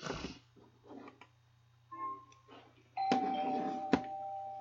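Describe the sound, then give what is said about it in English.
A doorbell rings in two clear chimes, a short tone followed by a louder, sustained ring with a sharp strike near the end, over a steady low hum and scattered background noise. “Who's at the door?”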